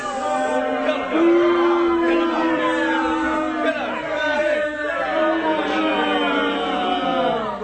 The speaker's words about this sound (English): Oh, that crowd is kind of rough. Oh, they're going to start throwing bottles pretty soon. That's just how bad that guess was, you know?